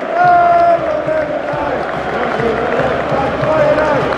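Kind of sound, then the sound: crowd, football stadium crowd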